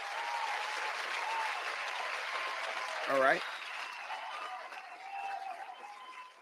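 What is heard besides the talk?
round of applause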